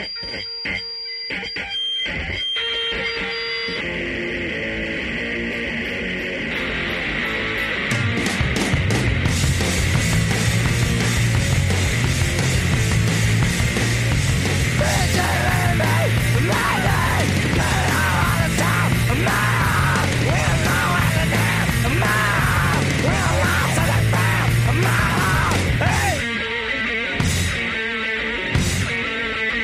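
A loud, distorted rock song with screamed vocals: a harsh, noisy opening gives way to a dense full-band onslaught of pounding drums and grinding guitars that stays intense until stopping abruptly near the end.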